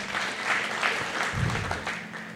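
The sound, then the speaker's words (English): A crowd claps steadily in a dense, continuous patter of many hands, fairly loud and sustained throughout, with no voices rising above it. “I get somebody to clap their hands”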